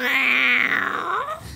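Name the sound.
cat growling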